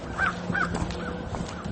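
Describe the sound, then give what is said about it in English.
Crows caw several times in quick succession, harsh repeated calls outdoors, with a steady low background noise and no talking. “Well, there we go. Creepy bird sounds.”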